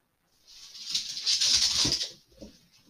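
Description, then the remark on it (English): A puppy scrabbles and shuffles, a busy rustling patter of paws and small bumps that swells for a couple of seconds and then trails off. No one speaks. “This little puppy is going to kill me.”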